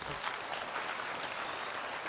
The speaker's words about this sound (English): All right, clap hands for the Lord.